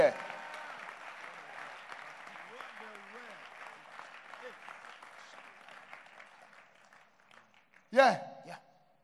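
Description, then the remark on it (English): An audience claps in a dense, steady patter of many hands that gradually thins and fades out, followed by a brief loud burst near the end with some voices. “Are you clapping hands for them?”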